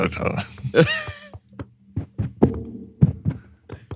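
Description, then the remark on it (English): A series of dull, hollow knocks on the wall panels of an old ship, about six irregular raps over a low steady hum, with a brief voice-like sound near the start. “Help me knock on some of these.”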